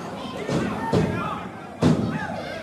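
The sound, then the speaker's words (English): A wrestler crashes onto the ring mat from a back suplex with a heavy, booming slam, followed by a couple of duller thuds, all over a murmuring arena crowd and faint voices. “Back suplex.”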